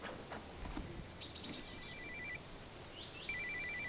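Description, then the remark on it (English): A satellite phone rings with rapid, warbling electronic beeps in short repeated bursts, over a faint outdoor background with a few bird-like chirps and no talking. “Is that your sat phone?”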